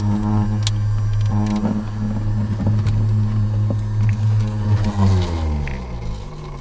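A steady, loud mechanical hum with a droning low tone from a small portable centrifuge spinning snake blood at speed inside a truck, powered from the truck's cigarette lighter, its pitch wavering and shifting near the end. No one speaks.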